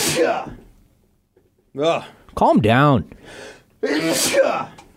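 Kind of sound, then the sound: human body sound, sneezing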